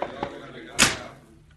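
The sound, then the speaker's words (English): A sheriff pushes a door shut with one firm, solid thud that rings out briefly and fades. Soft murmuring voices sit underneath before the impact. “Shut up until I close the door.”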